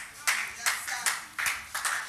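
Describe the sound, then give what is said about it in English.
An audience claps together in a steady rhythm, about five loud, broad bursts roughly evenly spaced, with a crowd murmur filling the gaps between them. “I'm not asking you to clap, but if you want to clap, let's do it with energy.”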